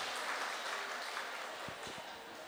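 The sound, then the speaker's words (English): A steady round of applause from a crowd at the Getaway Retreat for the musicians who played that morning, dense clapping that fills the moment with a bright, even rattle and holds its level throughout, with no one speaking. “Can you give them a warm round of applause for the music they've been giving us?”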